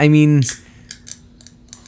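A can of 7% hazy beer brewed with Huell Melon and Hallertau Blanc hops being cracked open: a string of sharp, bright metallic clicks and snaps spaced irregularly over a couple of seconds, right after a brief loud voiced tone at the start.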